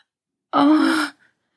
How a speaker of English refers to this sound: As his mouth met her clit, she let out a loud gasp.